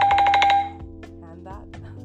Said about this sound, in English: That was actually a notification that I received from a friend of mine who, shout out to my friend, she knows who she is.